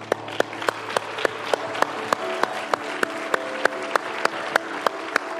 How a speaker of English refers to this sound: Hey, I like to clap.